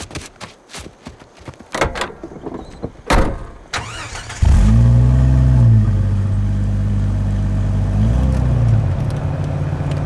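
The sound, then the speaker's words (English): A few sharp clunks and knocks, then an open jeep's engine roars to life and runs loud and steady, its deep rumble rising in pitch twice as it revs and pulls away, heading for a shelter before the rain starts. “let's all hop back in my jeep and head towards the shelter before the rain starts”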